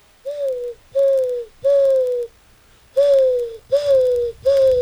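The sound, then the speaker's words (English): A voice imitates a dove, giving six breathy, even coos in a steady rhythm, fairly loud, each held briefly with short pauses between and no other talking. “All right, ready, dove?”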